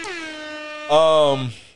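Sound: air horn sound effect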